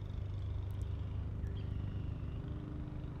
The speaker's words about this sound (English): That man all the way across the lake is starting to mow. Can you hear him mowing? Don't be scared. He's just the park man.